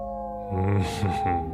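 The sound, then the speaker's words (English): Long, drawn-out wolf howls at night rise in sustained wavering tones, layered over a steady high drone, fairly loud with a brief breathy swell midway. “You hear them, Mr. Harker? The wolves? The children of the night.”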